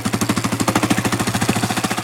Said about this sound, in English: But on the flip side, if you're riding in a gear that's too high, it's going to be chugging, and you can hear the engine when it's chugging.